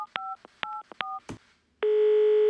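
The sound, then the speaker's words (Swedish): Several quick electronic telephone keypad beeps sound in an uneven rhythm as someone dials to call back a person who had phoned earlier, each a short two-tone chirp, followed by a rustle and then a steady, sustained ringing tone on the line. “Jag ska ringa den där personen som ringde hit och hade dåligt samvete för att den hade varit arg förut.”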